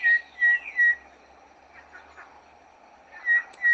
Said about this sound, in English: Okay, so you kind of get a gist of what the sound of the Cape Battis is. When I played the other ones, you'll hear they're very, very similar, slightly different in tone or in separation between tones, but we'll get to those as we get to them.